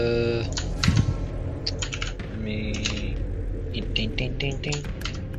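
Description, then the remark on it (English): Rapid clicking of keys on a computer keyboard, tapping in quick irregular bursts over a steady low background hum with some faint voices. “Well, I'm going ahead and typing in the junk.”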